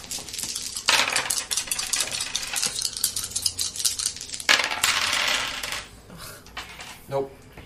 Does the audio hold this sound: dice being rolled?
yes